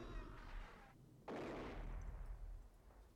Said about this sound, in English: What fucking explosives did he have? That thing went off twice.